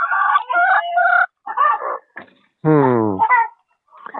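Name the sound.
hens clucking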